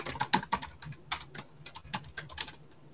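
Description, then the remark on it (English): Rapid, irregular clicking of keys on a computer keyboard, fairly crisp, with uneven bursts of keystrokes and no voices, as someone types in a question. “So I'm typing in, you know, what's the risk if somebody's attacking you, right?”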